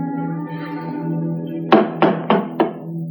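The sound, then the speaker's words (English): Four firm knocks on a door in a quick, even rhythm, clear, over a steady low musical drone that continues underneath before and after. “Just go ahead and knock.”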